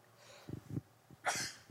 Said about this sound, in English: excuse me, sometimes you got to sneeze just to get blessed.